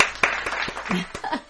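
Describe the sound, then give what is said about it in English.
A brief burst of hand clapping for a 56th birthday, roughly six sharp claps at an uneven, slightly hurried pace, moderately loud over a faint murmuring background. “So let's give a hand clap for me turning 56.”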